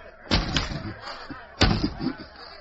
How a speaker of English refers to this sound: Fairchild turned his back to the window and with his bound hands beat on the glass.